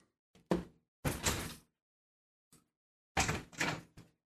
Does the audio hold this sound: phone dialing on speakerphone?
no